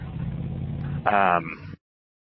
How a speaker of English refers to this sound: Watch right, car coming out.